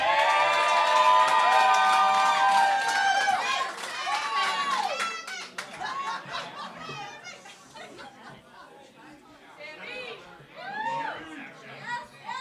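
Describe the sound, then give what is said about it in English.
A loud audience erupts in high-pitched cheers and excited screams for contestants being welcomed, then settles into scattered shouts and lively chatter as the applause fades. “I can't even rule against you tonight, can I? You have a lot of friends here.”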